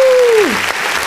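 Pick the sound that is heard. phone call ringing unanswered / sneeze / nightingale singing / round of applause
round of applause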